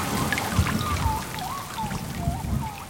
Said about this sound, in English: Global temperatures are high. There are violent storms and torrential rains.